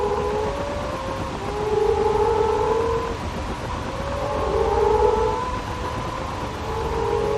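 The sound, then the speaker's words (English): Moaning frogs in southwest Western Australia call in overlapping low, drawn-out moans that swell and fade in slow waves, layered over a steady hiss of background noise with no voices. “You can find them on Twitter with the most excellent moaning frog recording from southwest West Australia.”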